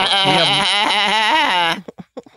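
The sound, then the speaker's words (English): A person does a loud, wavering goat-like bleat for almost two seconds, the voice quivering up and down, then breaks off into a few short breathy sounds. “Goat throat?”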